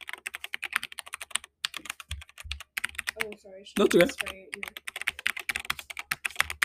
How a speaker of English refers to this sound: Okay, so like guys, first listen to the ASMR of the keyboard. Like it sounds. What is happening to this keyboard? Listen to the ASMR of the keyboard. Ready?